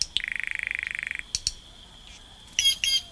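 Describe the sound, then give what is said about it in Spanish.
A green jay, with green, yellow and blue plumage, runs through varied calls: a fast, buzzy rattling burst, then a few sharp clicks and a harsh, loud squawky double call at the end, with no talking. “Una chara verde, la foto misma de un ave tropical, vestida con su plumaje verde, amarillo y azul, ofrece sus voces variadas.”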